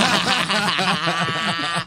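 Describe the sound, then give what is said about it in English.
A person loudly imitates a cow mooing as the punchline of an interrupting-cow knock-knock joke, one drawn-out, wavering vocal call lasting nearly two seconds, alone, with a slightly bleating, laughing edge. “Who's there? The interrupting cow.”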